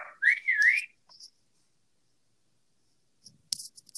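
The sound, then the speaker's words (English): A person gives a short, rising-and-falling whistle at dogs to quiet them, lasting under a second and fairly loud, followed by silence and then a few faint clicks and rustles. “I'm gonna whistle at them so that they can be quiet.”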